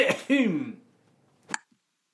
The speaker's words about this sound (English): You can see at the end there I had a bit of a cold. I was coughing